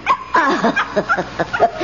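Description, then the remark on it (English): A small dog lets out a quick run of high yaps and whiny whimpers, about half a dozen short bursts with rising and falling pitch, as it follows its owner up to a cell. “See, there he comes. Oh, he's so naughty.”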